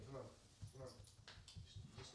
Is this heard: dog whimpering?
yes